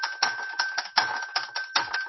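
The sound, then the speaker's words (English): A small xylophone tapped in a quick, slightly uneven rhythm, about nine bright, clicky strikes over a steady ringing tone, played alone with no voices. “And you can actually hear it on the recording. Yeah. It's a little xylophone.”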